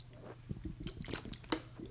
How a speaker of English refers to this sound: Excuse me, just drink some water. Oh, get that dead air, baby. Man, that's tasty water. Oh, that ice cold.